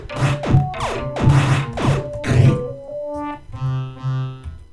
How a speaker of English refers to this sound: Then when I shoot, I get the sound effects, and then when the enemies are shot.